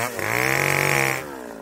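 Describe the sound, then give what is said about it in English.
A chainsaw engine revs loudly at a steady high whine for about a second, then cuts off abruptly, leaving quiet background. “And my week, as well as this podcast, as you know, is sponsored by Steel Power Equipment, maker of the world's finest chainsaws.”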